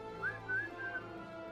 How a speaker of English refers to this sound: Listen, Tanis, a bird call from the woods. But that kind of bird doesn't live around here.